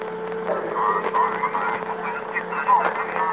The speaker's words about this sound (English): All I hear is a humming. Let's be patient.